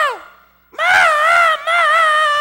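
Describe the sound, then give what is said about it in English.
A voice imitates a small boy screaming for his mama in a store after losing sight of his grandmother, a loud, sustained, wavering wail held for nearly two seconds with a brief break in the middle, after a short falling cry. “He looked around and started screaming bloody murder.”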